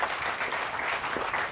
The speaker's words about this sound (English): There are some parents in the audience? Yes. Give them a round of applause, please, for being your sunshine.